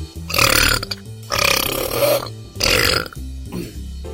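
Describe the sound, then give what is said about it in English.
Three long, loud, drawn-out belches in a row, each rumbling for about a second with brief pauses between, followed by a fainter, shorter burp at the end. No talking. “Definitely having a belch reel, mate.”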